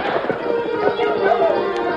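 The hooves of Silver, a great white stallion, pound in a quick, uneven rhythm as he gallops down a slope toward Thundercloud's wigwam, mixed into a dense, steady wash of noise that fills the whole two seconds.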